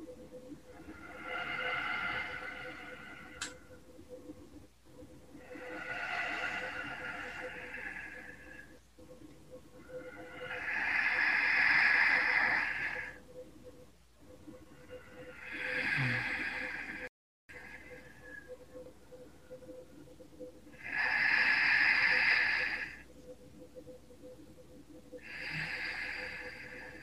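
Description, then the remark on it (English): Slow, deep breathing in and out: about six long, airy breaths in a steady, unhurried rhythm, each one rising and fading before a short pause, over a faint background hum. “I would love for you to just take a few breaths along with me and …”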